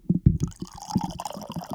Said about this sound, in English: Pouring that coffee. Sounds like my grandfather taking a piss.